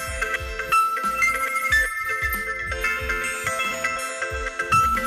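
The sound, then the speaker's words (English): A phone ringtone plays a bright, tinkling melody over a bouncy, regular low beat, repeating steadily and fairly loud for several seconds with no one talking. “Disregard the phone.”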